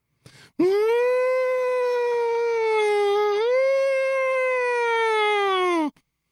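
A loud, steady purge siren wail in Louisiana blares for about five seconds, its buzzy harmonic tone holding a mid pitch, dipping briefly midway, then rising again before cutting off abruptly.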